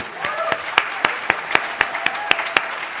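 A crowd applauds, a dense wash of clapping with a few sharp claps repeating in a steady, quick beat on top, and faint voices mixed in underneath.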